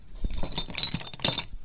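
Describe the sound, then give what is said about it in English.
Pens rattling and clinking together inside a mug, a quick cluster of bright, hard clacks and jingles with a faint metallic ring, no voices. “That was actually me just jostling some pens in a mug.”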